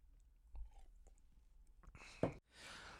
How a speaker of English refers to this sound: I guess something's stuck in my throat. Oh, don't you be thinking like that. One more sip.